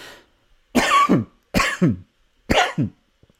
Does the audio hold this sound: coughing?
yes